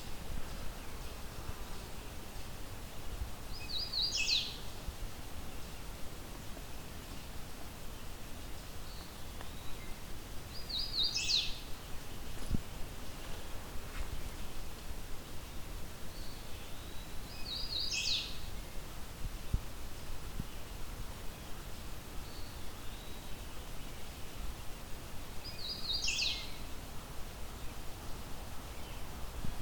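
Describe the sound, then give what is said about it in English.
A hooded warbler sings four short, bright phrases spaced roughly seven seconds apart, over a steady outdoor hiss of wind and insects. No one speaks. “If you had told me a couple days ago I'd be finding a hooded warbler and think that, oh well, yet another one anytime soon, I would have been pretty surprised.”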